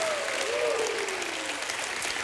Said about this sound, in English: Come on, somebody give God a hand clap. Woo!